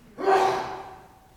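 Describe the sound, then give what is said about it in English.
A single sneeze bursts out abruptly, a sharp breathy blast with a brief voiced edge that fades over about a second. No talking is heard. “God bless you.”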